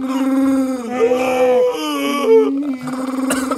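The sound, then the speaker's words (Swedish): A voice imitates Chewbacca, a growling furry alien, with loud, sustained, throaty moaning howls, wavering in pitch across several drawn-out bursts, with no words spoken. “Kan ni göra Chewbacca förresten? Eller hur fan låter han?”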